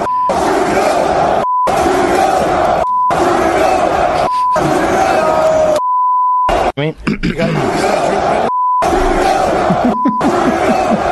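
A large UFC arena crowd chants loudly and steadily against Trudeau, its roar cut off again and again by short censor bleeps and brief gaps of silence.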